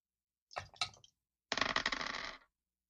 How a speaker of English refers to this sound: Okay, roll that dice then.